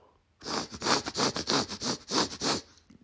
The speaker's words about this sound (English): Will you sniff my butt? Yeah, you know I will, bro.